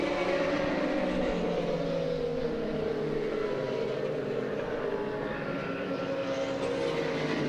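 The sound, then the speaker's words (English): A loud, continuous roar of five racing car engines of all categories running together as they come out of turn 11 pretty much side by side, layered and droning with no pause, the pitch shifting slightly as the pack passes. “Five cars came out of turn 11, pretty much side by side where they were by the time they got to the Salins Bridge.”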